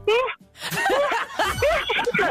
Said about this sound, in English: do a sneeze.